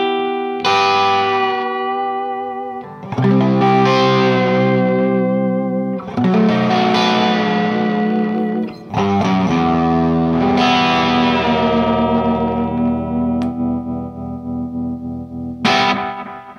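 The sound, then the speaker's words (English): A sustained electric guitar plays slow, ringing chords and notes with a gentle wavering vibrato, each swelling out into long delay repeats and a wash of reverb, loud and unaccompanied by any voice. “You know, just a little bit of vibrato goes a long way. And especially with a little delay and reverb, you know, and you can kind of get that, you know, that far out thing.”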